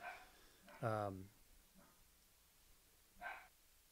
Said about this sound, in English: Obligatory dog appearing in there.